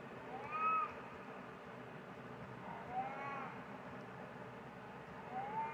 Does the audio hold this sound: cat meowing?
yes